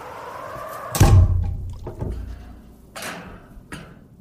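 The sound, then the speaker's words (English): The heavy hatch door of a small submarine named Atlantis, placed in a break in the ice, swings shut with one deep, booming thunk, followed by three lighter metallic clicks spaced about a second apart as it locks. No voices. “Let me just climb in, close up the hatch door.”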